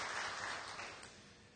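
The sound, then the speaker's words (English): An audience in a church sanctuary applauds the people who worked on the sanctuary, with dense, overlapping hand claps forming a steady crackling wash that gradually fades across the short stretch, with no voices over it. “Would you just stand up for a minute if you laid hands on anything in this sanctuary and you can just give them all a hand clap?”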